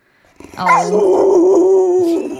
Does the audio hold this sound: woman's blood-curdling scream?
no